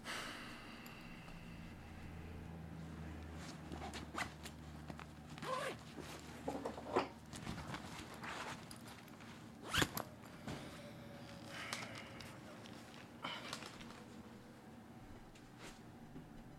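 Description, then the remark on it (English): A bag being zipped up, several quick rasping zipper pulls with rustling and handling noises in between, over a steady low background hum. “Grab a bag on the way out and place the sturdiest knife that you have into the bag.”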